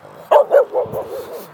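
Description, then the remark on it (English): A dog that is following the speaker barks twice in quick, loud succession, then trails off into a few softer, yappy barks and whines. “Because, you know, we were talking about switching off a minute ago, being away from people, and I'm getting followed by a dog.”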